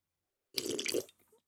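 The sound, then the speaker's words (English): A single short, wet slurp of someone sipping a drink, lasting about half a second, followed by a couple of faint gulping or swallowing sounds. No one speaks. “Another sip.”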